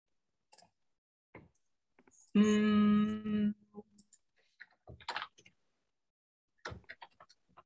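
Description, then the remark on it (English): Scattered, irregular clicks of typing on a computer keyboard, fairly quiet, with one brief loud tonal buzz in the middle and no talking. “Come on, keyboard.”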